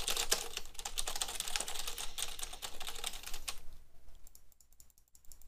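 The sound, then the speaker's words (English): Rapid, loud clacking of a computer keyboard, dense keystrokes for about three and a half seconds, then thinning to a few scattered taps before stopping. “It's a loud keyboard.”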